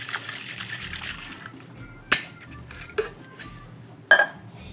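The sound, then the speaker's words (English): A cocktail shaker holding a puree mixture is dry-shaken without ice, giving a soft rhythmic slosh of liquid, followed by a few sharp metallic clinks spaced about a second apart. Fairly quiet, with no talking. “It's a dry shake because we're going to put this over ice with the chamomile beer. You need to give it a little shake.”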